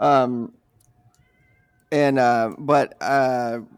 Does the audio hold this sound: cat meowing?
yes